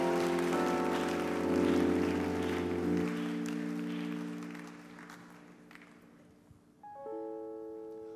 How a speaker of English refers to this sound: Come on, give a big clap offering to Jesus.